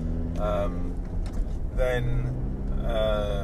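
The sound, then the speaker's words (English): A steady low engine rumble and road drone, as heard from inside a moving car, with muffled voices rising briefly over it a few times. “Then you start to hear all the noises of the car, and you start to think, okay, this is a bit different.”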